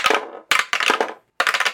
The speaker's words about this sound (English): We want to throw down some dice and see who gets to go first.